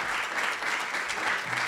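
Steady crowd applause, a dense wash of many hands clapping at an even, sustained loudness with no voices standing out.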